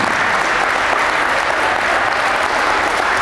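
A crowd claps steadily and loudly, a dense, even wash of applause that holds its level for the whole stretch with no voices standing out.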